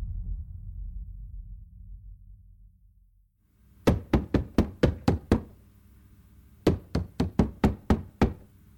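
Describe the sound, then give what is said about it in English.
Two bursts of sharp, rapid knocking on a house door late at night, about seven raps each, loud, separated by a brief pause, following a low rumbling hum that fades out. “First the phone, now someone's at my door this late?”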